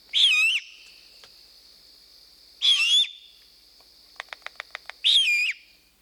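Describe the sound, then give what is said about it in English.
Owl fledglings in Telluride, young of a pair living there, give three harsh, hissing screeches of begging, each about half a second and spaced a couple of seconds apart, with a quick run of sharp clicks between the last two. “So that sound there is a begging call. What they were hearing is the fledglings, those owlets, the young owls that came from the pair that live here in Telluride that had young, those kids don't want to go out on their own.”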